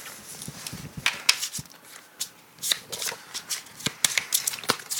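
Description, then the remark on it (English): Crisp riffling and snapping of a deck of playing cards being shuffled as ability cards are shuffled back into the deck after a battle in a card game, a rapid series of sharp papery flicks with brief pauses, heard on its own without talking. “We shuffle our abilities back into our deck.”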